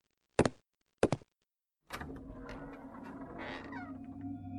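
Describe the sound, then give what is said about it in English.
Two sharp metallic clicks, like a lock turning, are followed by a long, drawn-out creak as a door swings open, with no voices. “I'll unlock the door.”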